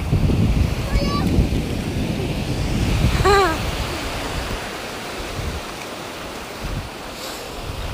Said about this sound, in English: Aww, the sea is so lovely. Low tide coming up to high tide.